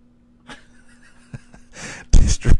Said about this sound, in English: My dog's going nuts. Are you fucking okay? I think she's high. She wants attention when I get on the microphone. That's what she wants.